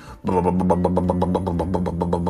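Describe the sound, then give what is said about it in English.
A voice imitates a monster truck engine driving off, a loud, sputtering rumble that pulses rapidly at a steady low pitch, starting abruptly after a brief silence and holding for about two seconds. “Caveman Dave and Carter all jumped on the monster truck and started driving to go look for some cool dinosaurs.”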